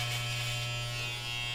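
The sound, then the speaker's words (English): Electric hair clippers buzz steadily as a person cuts their own hair live on stream, a constant motorized hum with a strong low tone and a bright, hissy upper edge, holding even loudness with no talking. “Cutting my hair live on 4 different streams when it would usually be 5, but Twitch couldn't make it, if you know what I mean.”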